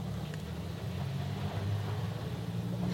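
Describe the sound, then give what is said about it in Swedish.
A car's engine rumbles steadily, its low drone swelling slightly midway as the vehicle goes past, with no voices over it. “Var det kommer en bil?”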